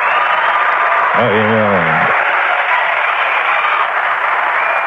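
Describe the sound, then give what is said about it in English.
Dense, steady audience applause fills the whole stretch at a loud, even level, with a brief voice calling out over it partway through. “Hey, that applause is for you, man.”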